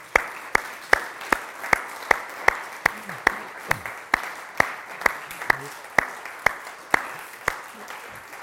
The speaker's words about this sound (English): I thought it would be really good just to clap hands. And as we do that, let's just look around the room and express our appreciation as we clap.